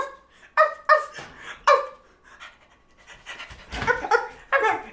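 A dog pants in quick, uneven bursts of breathy, slightly voiced huffs, fairly loud, with short pauses between groups and no talking.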